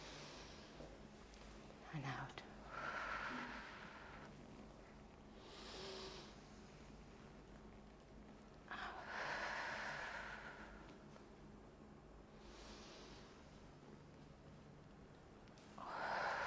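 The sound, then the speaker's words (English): A person sitting upright draws three slow, deep breaths in through the nose, each a soft, airy rush spaced several seconds apart, with quiet pauses between and no talking. “How does the air come through our nose? So 3 times, breathing in.”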